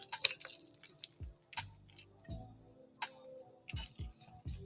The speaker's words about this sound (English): As I spill water all over myself.